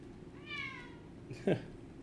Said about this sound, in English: Gotta keep it rock, especially if the cat's gonna be meowing all over the place.